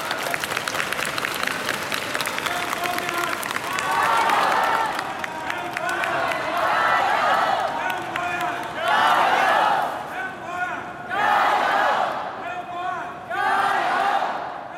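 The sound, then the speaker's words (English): A large crowd of people sitting in the main arrivals hall of Hong Kong airport cheers and applauds in repeated swelling bursts, with clapping and overlapping voices rising and falling in a reverberant hall, background chatter filling the gaps. “I'm here in the main arrivals hall of the Hong Kong airport, and there's a crowd of people just sitting here. They break into cheers.”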